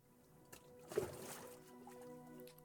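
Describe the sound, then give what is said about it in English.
Gentle water laps and sloshes around a small paddled boat drifting out into a river, little waves roiling the surface, with a soft splash near the start and quiet trickling continuing throughout, low in volume. “The paddle party continues to drift out further now into the river. Little waves roil the surface, but you are undaunted.”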